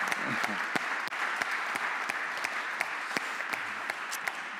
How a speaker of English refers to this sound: So let's give a big kind of round of applause. Thank you. Great.